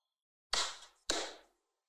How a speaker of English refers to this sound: You know, I heard your second clap. It was kind of tailing off from the first. Have the second clap be more powerful than the first clap.